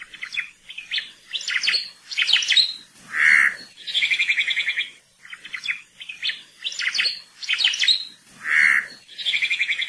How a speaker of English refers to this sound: Oma'o have one of the loudest and most recognizable songs of any Hawaiian forest bird.